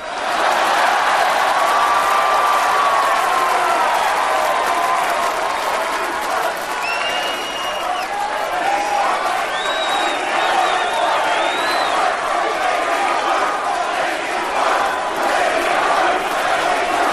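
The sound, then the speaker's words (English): A large arena crowd roars and chants continuously and loudly, with half the crowd chanting Rocky and the other half chanting lady parts. Scattered whistles and shouts rise above the dense wall of voices throughout. “We got half the crowd chanting Rocky and the other half chanting lady parts.”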